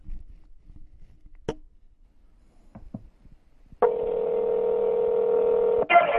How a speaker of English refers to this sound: Now, this is the phone call.